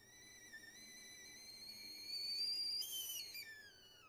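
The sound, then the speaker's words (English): A kettle whistles on the stove, a steady high-pitched tone with stacked harmonics that wavers slightly and grows louder and shriller midway before easing off. No one speaks. “She trailed off with a quiet laugh as the kettle started to screech, and she reached over to turn off the stove, moving it to another burner so she could prepare their cups.”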